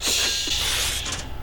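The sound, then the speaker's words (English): A mechanical cash register clatters with a steady, loud ratcheting whir, then a brighter metallic burst near the end, heard as part of a song. No one speaks. “It was that cash register that.”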